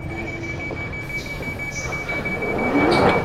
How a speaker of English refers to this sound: The train is stopping soon and I need to leave.